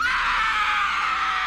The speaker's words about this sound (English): Suddenly, a blood-curdling scream tore through the night, shattering the silence like glass.